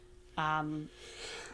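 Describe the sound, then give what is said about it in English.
A single loud sneeze: a sudden voiced burst that cuts off sharply, trailing into a softer breathy hiss. “Bless you.”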